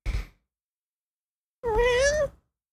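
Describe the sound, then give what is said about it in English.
A single drawn-out cat meow, clear, rising then falling in pitch, preceded by a brief soft rustling bump and a short pause of silence. “Well, you want to meow?”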